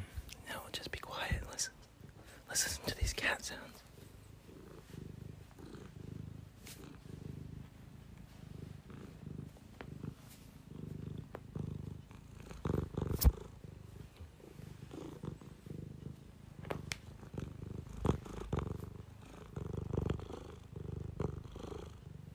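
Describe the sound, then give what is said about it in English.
A cat purrs steadily, a low continuous rumble that swells with each breath, with occasional soft bumps and rustles over the purring and no one talking. “Oh, let's do some cat sounds.”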